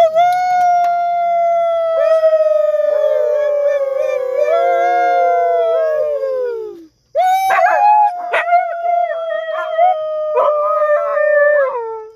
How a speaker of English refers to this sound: Can you give us a howl real quick for the viewers? Leto, will you give us a howl? Yeah. Yes, sir. We got our wolf. That's Leto.